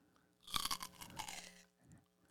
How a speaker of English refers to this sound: Gonna let you finish crunching.